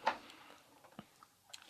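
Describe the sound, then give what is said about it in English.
Soft, crisp crunching of something being chewed, a few irregular crackly bites spread across a quiet moment with no talking. “Crunch, crunch, crunch.”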